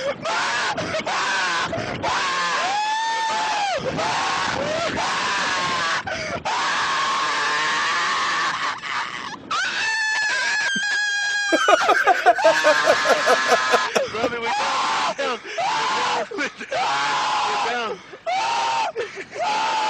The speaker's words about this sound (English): And mind you, listen for a little bit of yelling in this for mommy. He's yelling for mommy.